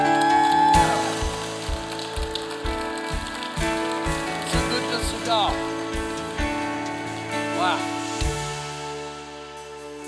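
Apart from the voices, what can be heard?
audience clapping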